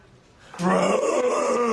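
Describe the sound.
A voice imitates a Godzilla roar: after a brief quiet moment, a loud, sustained, raspy bellow bursts in and holds steady at a low-mid pitch until the end.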